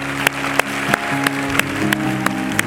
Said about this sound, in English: Would you give a great applause to our fathers today? Come on, give a great applause.